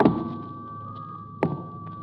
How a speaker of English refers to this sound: Then as they came closer, you heard uneven, heavy-footed steps.